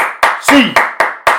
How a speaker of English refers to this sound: So I want to see Bruins. You know, they got that 8 clap. 1, 2, 3, 4, 5, 6, 7. Go.